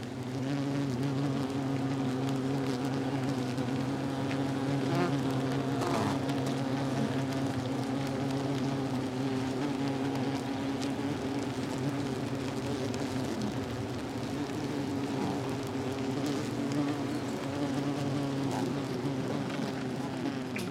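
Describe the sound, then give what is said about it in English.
A dense, steady hum of many bees buzzing inside a beehive, recorded with a small microphone placed in the hive; a continuous droning drone with layered tones that swells slightly but never stops, no voices present. “we put one of the little microphones into a beehive. So do you want to hear what that sounds like?”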